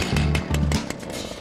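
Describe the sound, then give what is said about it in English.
A chainsaw engine roars loud, revving in two quick bursts with a rattling, buzzing edge, then idling rougher as it winds down. No one speaks. “Today I'm going to teach you how to make a homemade security system with just some rope and a chainsaw.”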